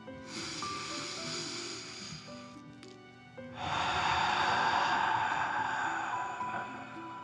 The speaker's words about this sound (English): Now, set your listening buddy to the side and let's take three deep dragon breaths. Breathe in through your nose, filling up your chest and belly, and then out, pretending you are breathing fire. Ready? Okay. Deep breath in and out.